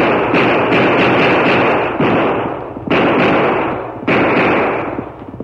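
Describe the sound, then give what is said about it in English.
Twelve loud gunshots fired into the air from two guns at night in a Lone Ranger radio drama, each sharp crack trailing into a long, heavy rumble that fills the gaps between shots. No voices are heard. “Twelve shots rang out through the silent night.”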